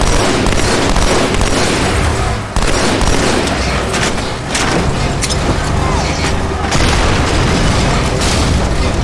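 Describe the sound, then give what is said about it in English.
Loud explosions boom one after another, a dense roar of blasts and deep rumble filling the whole stretch, with only brief dips between bursts and faint voices buried underneath. “Did you blow me up?”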